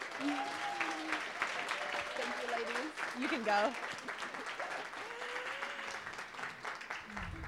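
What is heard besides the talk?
big round of applause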